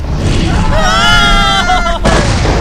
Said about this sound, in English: The hell was that? It was a ball of fire. Good lord.